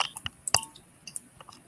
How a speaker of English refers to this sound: I'm smashing up some chicken wings with extra lemon pepper. Listen. Lemon pepper steppers.